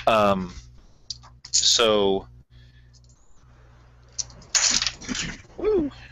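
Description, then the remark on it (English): Dice clatter and click in a few short, scattered bursts as board game pieces are handled, with brief voice-like sounds rising in between. “Dice everywhere.”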